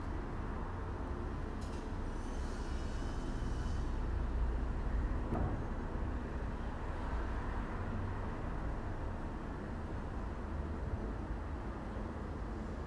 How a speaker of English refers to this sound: Cars, construction, possibly an airplane or a helicopter. There's just something comforting about that.